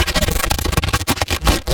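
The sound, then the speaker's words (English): A recording of a balloon being scratched, processed with frequency shifting, automated tremolo and maybe automated delay: a dense, rubbery scrape that flutters in quick wavering pulses with a smeared, effected tone, fairly loud and continuous for under two seconds, with no voices. “This is a balloon being scratched with all the same shit.”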